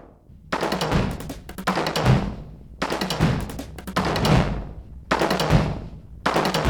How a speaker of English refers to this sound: same thing, him going around five snare drums, but just hitting the rim of the snares instead of the actual drum. As you can hear there, there's a bit of distortion, which we recorded in real time through various guitar pedals and things, saturators.